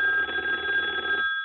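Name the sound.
telephone ringing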